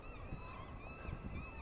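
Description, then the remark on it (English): Lots of seagulls squawk repeatedly, their harsh, wavering calls overlapping across the whole moment above a low outdoor rumble. “So lots of seagulls squawking away”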